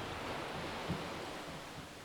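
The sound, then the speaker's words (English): Ocean waves wash onto a shore in a steady, even roar of surf, moderately loud with no single distinct crash, and a hint of wind mixed in. No one speaks. “rustling palm fronds, chirping birds, and breaking waves, all remind you of your connection to the here and now.”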